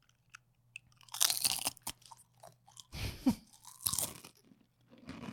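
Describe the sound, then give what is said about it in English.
Someone crunches a salt and vinegar potato chip: a few loud, brittle crunching bites separated by short pauses, with softer chewing in between and no talking. “I'm going to give them a salt and vinegar sound so that they can compare it.”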